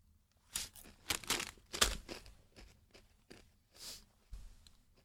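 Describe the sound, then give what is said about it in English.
Someone crunching Cool Ranch Doritos chips: a string of crisp, brittle crunches in an irregular chewing rhythm, with short pauses between bites. No one speaks. “Yeah, Cool Ranch Doritos and coffee.”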